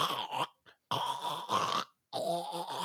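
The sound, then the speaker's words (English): Someone imitates loud snoring with their voice, giving three long, rough, rattling snorts in a steady rhythm, each separated by a short pause, fairly loud. “Although it's really loud snoring.”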